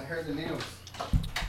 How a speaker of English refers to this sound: Somebody knocking?